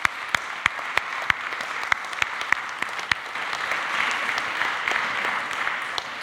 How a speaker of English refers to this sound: Let's give them a quick round of applause. Come on.